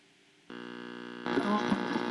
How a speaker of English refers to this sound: So when you turn the radio on, you hear static, and then you turn it, and then you'll hear a program.